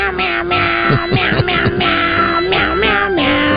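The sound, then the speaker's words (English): A man's voice meows out a melodic Christmas carol like a cat, each drawn-out, pitched meow following the tune over steady backing music, loud. “It's the guy in the office that talks like a cat, singing your favorite Christmas carols.”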